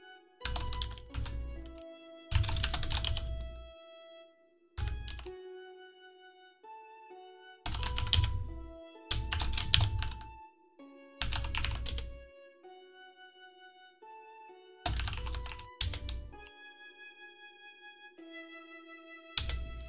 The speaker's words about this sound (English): Give me 1 second. I am typing them all out.